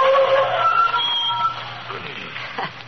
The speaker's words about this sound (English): Good thing I got them brakes fixed.